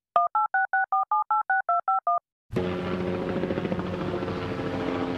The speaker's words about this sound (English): You know what? I got you this time. I'm calling in the helicopter.